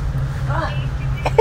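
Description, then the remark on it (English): A car horn gives two quick honks at the end, the second louder and more tonal, over a steady low engine rumble, with a brief murmur of voice earlier. “I think a double honk.”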